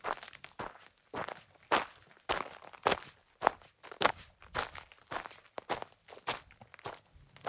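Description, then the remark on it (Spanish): Steady crunching footsteps on a dusty, winding trail toward a canyon, with trekking poles tapping the ground between strides and kicking up small clouds of dust, about two impacts per second, fairly loud and alone with no voices. “Mis bastones de trekking levantaban pequeñas nubes de polvo.”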